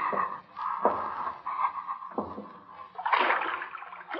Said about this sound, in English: Go down again. See if water's deep. Wade through water if it isn't deep.